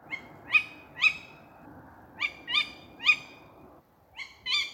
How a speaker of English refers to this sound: So firstly, we have the sound of a tawny owl.